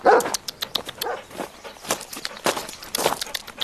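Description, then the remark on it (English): A police search dog barks during a search around a farm, with a short yelp near the start, over a busy run of crisp scuffling footsteps and pawing that continue throughout; no one speaks. “I'll release the dogs now.”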